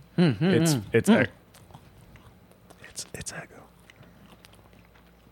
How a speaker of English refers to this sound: All right, you guys are just chewing. This is dead air. It's fucking Eggo. There's no way it's not Eggo. It has yellow crosshatch on the top.